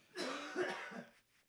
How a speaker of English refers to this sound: Excuse me. You've just followed all the things you shouldn't do for coronavirus. Yeah. He's coughed everywhere, folks.